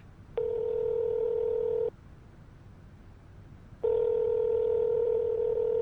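A telephone ring tone sounds on the line of a call placed by voice recognition dialing: two long, steady, buzzy tones separated by a pause of about two seconds, fairly loud, with no voices.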